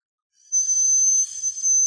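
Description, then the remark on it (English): A whistling candy blown into a shrill, high-pitched, steady whistle that begins abruptly and holds for over a second, wavering briefly in loudness partway through, with no voices. “Yeah, see if they still whistle.”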